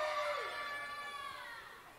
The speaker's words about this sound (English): I want to give them another opportunity to scream. Kids, can you scream for me? 3, 2, 1.